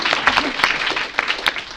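An audience gives a round of applause: many hands clapping at once in a dense, irregular patter that holds steady and fairly loud throughout, with no voices standing out.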